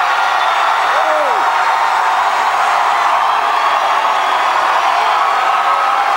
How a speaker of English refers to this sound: Definitely the loudest of the crowds we've heard tonight between Cruz, Rubio, and Clinton.